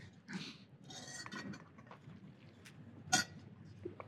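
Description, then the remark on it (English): Faint kitchen sounds of someone getting water: a short rush like pouring, soft shuffling, and then a sharp glassy clink near the end, with no one talking. “I'm just going to get some water.”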